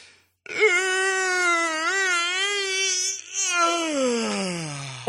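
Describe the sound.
A long, exaggerated vocalized yawn, one continuous voiced moan of about four seconds that swells, wavers slightly, then slides down in pitch as it trails off. No words are spoken.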